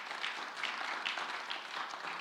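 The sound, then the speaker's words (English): A crowd applauds steadily, many hands clapping at once in a dense, even wash of sound with no single claps standing out and no voices over it. “We find, go ahead, that's clapping time.”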